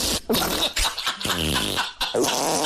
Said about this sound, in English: Important question: how many fart sounds do you have on the soundboard? Oh, so these are my farts from the 90s. Yeah. So these are old historical farts. What? I used to carry around a cassette player and record my farts.